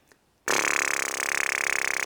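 After a brief silence, a loud, buzzing drone starts abruptly as lips vibrate into a tube instrument with a single hole, played only with the mouth: a low, raspy, harmonic-rich tone that holds steady with a quick, pulsing flutter.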